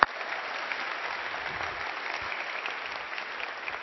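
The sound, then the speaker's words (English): An audience applauds steadily for about four seconds for Fuller graduates, a dense, even wash of many hands clapping at once, sustained without a clear build or fade. “So if you graduated from Fuller or you just want to get a round of applause for any reason, go ahead and shoot your hand up.”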